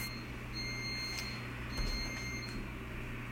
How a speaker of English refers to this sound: We've just installed this high-tech thing where a high-pitched, annoying beep goes off when we want to signal culture in crisis. So the coffee maker's actually designed not just to brew us coffee, but also to say, culture in crisis